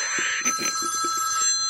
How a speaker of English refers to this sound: That's my telephone. Yeah, apparently. That's how British telephones sound. Yeah, who has a home phone?